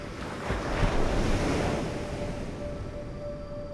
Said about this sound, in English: The waves crashing on the beach.